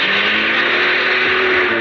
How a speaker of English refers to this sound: He shoved the car into reverse.